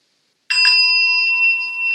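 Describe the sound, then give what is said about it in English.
A handheld bell is struck once after a brief silence and rings out clearly, its bright metallic tone sustaining steadily with no voices. “You see, this bell, I ring.”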